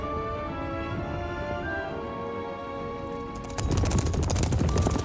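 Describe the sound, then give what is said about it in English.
Horse hooves galloping at speed beneath sustained, droning tones, before a sudden loud, rumbling surge of noise takes over for the last second and a half. A figure in black armor on a horse rips Nilfgaardian soldiers off their horses while Yennefer and Geralt ride at the front, being chased. “It's some big dude in black armor on a horse.”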